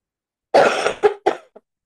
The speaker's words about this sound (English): You have the cough that won't go away either? No, I just got it. Oh, welcome to the club. I've had it since Christmas.